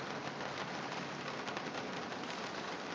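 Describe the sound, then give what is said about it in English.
Steady, dense patter of rain drumming on a van roof, a continuous hiss of countless drops with no pauses and no voices. “Listen to the rhythm of the falling rain. Falling on my truck, or my van, is more like it.”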